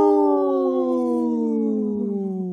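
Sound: wolf howling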